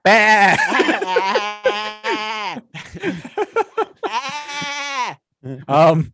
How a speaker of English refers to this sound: Baby sheep.